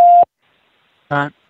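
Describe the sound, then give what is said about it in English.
A loud, steady electronic beep like a voicemail recording tone sounds for a quarter second, then silence, followed by a second short, buzzy tonal burst. “Please message after the beep, and your friend will receive it within seconds.”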